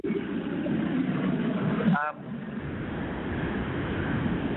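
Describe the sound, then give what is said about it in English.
A loud, steady roar of jet engines as planes take off, a broad rumbling wash that dips briefly midway with a short rising whine, with faint voices under the noise. “Sorry to take these planes off at the moment. I don't know if you can hear them, but I can't hear a thing.”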